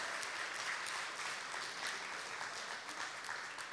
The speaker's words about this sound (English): Can we clap for yourselves and for everyone else? Can you clap for them? My gosh.